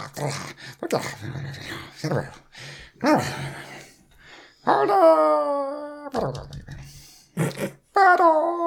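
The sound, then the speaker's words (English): A voice imitates the whimpering howl of a single gnoll heard through the door on the right: after some breathy, choppy vocal noises, two drawn-out, wavering whines slide downward in pitch, the first long and loud, the second shorter. “When you walk in the door on your right, you do hear like a... like a knoll. You're not used to the sound. It sounds like it's just one knoll in there.”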